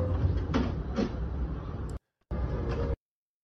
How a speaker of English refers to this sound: But you're on the subway with a microwave on your head. How am I not supposed to film you?